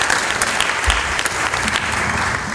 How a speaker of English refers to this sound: Another round of applause for these guys.